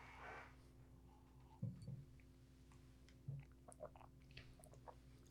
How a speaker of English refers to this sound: As you're both swallowing deeply, just right into the mic.